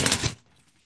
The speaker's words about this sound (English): This is actual aluminum in a very thin sheet. And you can do a variety of things with it. And one of the things you can do with it is this. Some scissors here. Let's see how they sound.